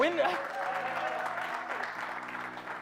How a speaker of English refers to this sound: Yes, you can clap, so come on.